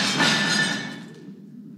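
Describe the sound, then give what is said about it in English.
A glass plate hits the floor and shatters in a loud, bright crash. Shards jingle and ring with a thin high tone, then the sound fades into quiet rattling debris. “But what happens when the glass plate falls?”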